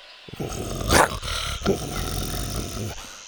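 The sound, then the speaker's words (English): A T-Rex growls as it nips at a raptor, a steady rumble for about three seconds, swelling into two harsher snarling bursts near the start and middle before settling back to a low, continuous snarl. No voices. “Buck nipped at it and growled.”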